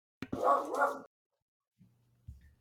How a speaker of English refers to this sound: And my dogs are barking, so I'm going to mute myself. They're excited. They're excited. Listen, when the animals are barking, that's how you know something has happened, that the primal nature of reality has been shifted.